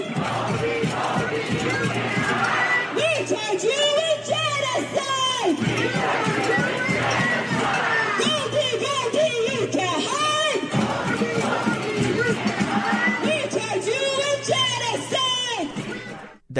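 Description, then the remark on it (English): A large crowd chants in unison outside a Jewish-owned deli in Philadelphia, loud rhythmic shouted phrases repeating over and over, with many voices yelling together and a steady low hum beneath, continuous throughout. “A mass crowd outside of a restaurant in Philadelphia because it's owned by an Israeli Jew.”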